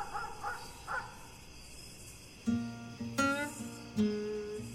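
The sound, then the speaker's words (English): At night in rural Taylor, Mississippi, a dog barks from far off: a few faint, short yelps first, then louder, more drawn-out barks that ring with a tonal quality in an otherwise quiet outdoor setting. “The only sounds I might hear are the occasional barking dog from somewhere off in the distance.”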